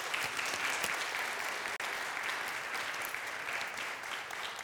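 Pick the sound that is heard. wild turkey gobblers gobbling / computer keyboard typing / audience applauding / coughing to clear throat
audience applauding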